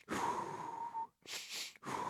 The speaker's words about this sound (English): Whew. I gotta do a couple breathing exercises.